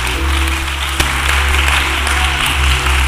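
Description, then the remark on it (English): A large crowd claps steadily and continuously in praise to God after a prayer, a dense wash of many hands, with a low hum running underneath and no break in the applause. “Clap your hands and just be giving praise.”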